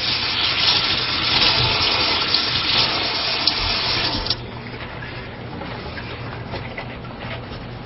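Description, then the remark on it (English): Tap water runs in a steady, broad rush while fingers are rinsed under it during bacon preparation, then the flow drops to a quieter trickle partway through before fading off. “Okay, once again, we'll rinse off the fingers.”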